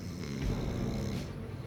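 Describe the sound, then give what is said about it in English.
A loud, exaggerated snore, a deep throaty rumble drawn out for over a second, made by a man theatrically imitating snoring while pretending to be asleep. “was pretending to be asleep and was making the most ridiculous snoring sounds.”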